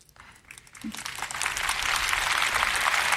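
Polite, lukewarm applause from an audience: a few scattered claps at first, quickly filling into a steady, moderate patter of many hands that holds without building to cheers.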